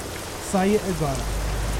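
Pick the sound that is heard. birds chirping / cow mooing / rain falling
rain falling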